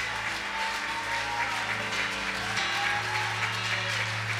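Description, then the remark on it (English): A church audience claps hands unto the Lord steadily and densely throughout, a continuous crackling wash of applause over sustained low musical tones that hold and shift partway through. “Can you clap those hands a little bit louder?”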